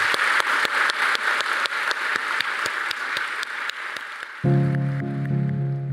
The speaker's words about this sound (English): thank you all so much for coming, and can we give Kamila a huge round of applause?